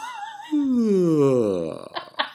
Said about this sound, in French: Ça, c'est le bâillement du gouffre. Il vient de loin.